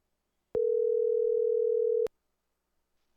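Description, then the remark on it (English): A single steady telephone ringing tone sounds clearly for about a second and a half, starting and ending with a click, followed by near silence and no talking, as a phone call is placed to someone in Lake Tahoe. “We got to call our guy, Joe Murphy, in Lake Tahoe.”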